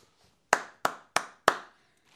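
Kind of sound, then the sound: human body sound, single hand clap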